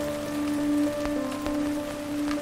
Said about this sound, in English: The rain is here again. When it comes in days. 1, 2, 3 days of rain. Rarely 4, but sometimes.